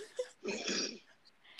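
A single long, breathy inhalation through the nose, a broad hissy rush lasting about half a second before fading into quiet breath noise.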